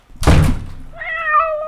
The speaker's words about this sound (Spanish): Sí, Panchito, ese portazo fue inquietante. Sí, felino, revise si hay ventanas abiertas. El felino dice que están cerradas y no existe corriente de aire. Es sospechoso.